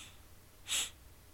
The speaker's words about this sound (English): And guys, I'm so sorry about the sniffling. My allergies are just out of control today. It rained like hell for like 2 days, and there's things blooming in the air.